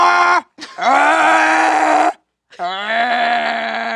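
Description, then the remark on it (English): Someone vocally imitates a truck with three loud, sustained, nasal blasts separated by brief gaps. The first, short blast imitates the truck in the Michael Bay movie Ambulance; the second is long and wavering, and the last holds steady at a lower pitch. “You know, I recognize that first sound you did. That was the truck that was in the recent Michael Bay movie Ambulance.”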